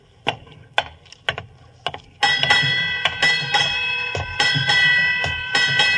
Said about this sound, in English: Eight bells. Let's see, that'd be... Midnight, Watson.